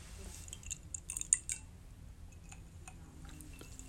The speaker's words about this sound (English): I got to sip the drink on that, man, because this shit about to get out of hand, man.